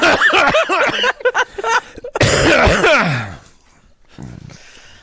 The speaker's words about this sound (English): I have to cough.